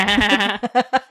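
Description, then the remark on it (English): A woman imitates a goat's bleat with her voice, holding a wavering, nasal note for half a second before breaking into four short, stuttering pulses, fairly loud, like a baby goat. “the bleat of a goat.”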